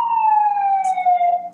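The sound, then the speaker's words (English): An emergency vehicle siren wails steadily and fairly loudly outside in the Bronx, its tone sliding slowly downward in pitch across the whole stretch, with no voices over it. “Siren. Yeah, that's the Bronx for you”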